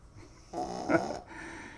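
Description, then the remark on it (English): A dog snores once, a raspy, rumbling inhale peaking in a brief snort, then settles into softer breathing while being petted, in Oldsmar, Florida, beside Tampa Bay. No one speaks. “I am petting the dog in real time.”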